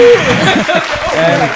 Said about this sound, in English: Hello. Big applause.